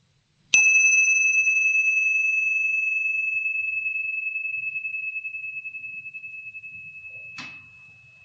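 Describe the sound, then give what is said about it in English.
A meditation bell is struck once and rings out clearly, its pure tone slowly fading over several seconds, before a second, softer strike near the end. No one speaks. “I'll ring the bell just so we have a couple of minutes to breathe and let in what I've said,”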